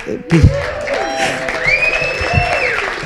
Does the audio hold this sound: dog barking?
no